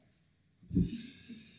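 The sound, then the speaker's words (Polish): Water pours into a kettle: a brief hiss, then a soft thump as the stream begins and a steady, rushing splash that continues to the end, with no one speaking. “Biorę czajnik. I nalewam wodę.”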